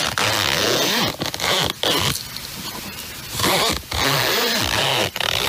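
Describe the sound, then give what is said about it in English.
A zipper is pulled back and forth several times in quick rasping strokes, loud, with brief pauses between pulls and no voices. “What does that zipper belong to?”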